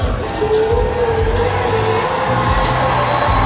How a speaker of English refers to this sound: The stage lights just went off, the crowd lights just went out, and you heard the cheers